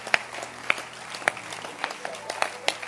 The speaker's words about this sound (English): Let's clap our hands for those few members I have met. They are heroes to me.